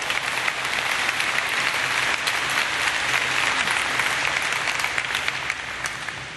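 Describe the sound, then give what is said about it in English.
A crowd applauds steadily, a dense, even wash of many hands clapping at a constant loud level, with no voices and no pause across the whole stretch. “That's worth applauding.”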